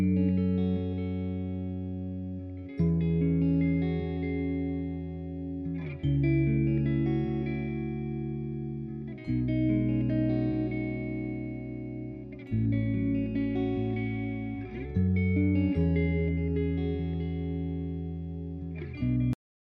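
Clean acoustic guitar drenched in reverb plays a song intro, a slow sequence of ringing chords, each shifting every few seconds and sustaining into the next, loud with no voices, ending abruptly.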